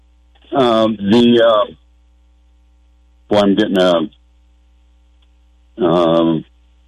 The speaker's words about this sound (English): Anyway. Can't do anything about the echo. You're just going to have to fight through it.